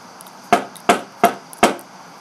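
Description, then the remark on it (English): Four firm knocks on the wooden door of room 308, evenly spaced about a third of a second apart, each a sharp hollow rap that dies away quickly, with only a faint steady hiss behind them. “The giraffe was knocking on the door of 308.”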